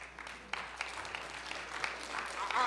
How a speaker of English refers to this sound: If you're willing to do that, amen, we will invite you now to not only clap your hand, but stand.